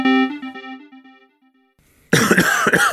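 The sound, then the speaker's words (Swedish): A sustained tone fades into near silence, then a sudden burst of loud, harsh coughing erupts and fills the last second. “Med de härliga hostningarna så avslutar vi dagens pappapodd.”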